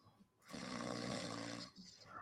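A single loud, rasping snore lasts just over a second, a rough rattling inhale that swells and then cuts off, with quiet moments before and after.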